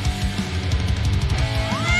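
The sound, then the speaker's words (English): A cat, Grot Bags, gives a short, rising meow near the end over a steady rumbling, pulsing low noise that fills the whole moment. “Sorry, guys, so anyone doesn't realize, that cat there is a home.”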